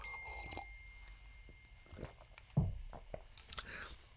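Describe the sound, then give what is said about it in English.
Quiet sips of hot coffee: a few soft slurps and wet mouth sounds, then a low gulp and a light clink, with no talking. “Anyway, moving on with a sip of coffee in the middle.”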